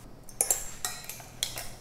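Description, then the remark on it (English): A metal strainer clinks and rattles against a heat-proof bowl as it is set in place, a handful of bright metallic taps with a faint ringing tail, no voices. “So, just gonna get my strainer ready. And make sure you're using a heat-proof bowl because the oil is definitely gonna be really, really hot.”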